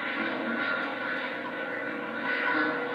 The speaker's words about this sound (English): Oh, I saw this plane land before. Remember?